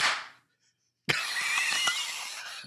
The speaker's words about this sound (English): It did not. I heard three different distinct claps.